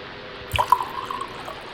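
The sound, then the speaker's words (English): Cheap Spanish red wine, Carreo Vino made in Spain, splashes and gurgles into a glass in a short pour with a little spill, a few bright drips and a rising liquid ring as the glass fills. No one speaks. “So, let me get a dirty pour going here.”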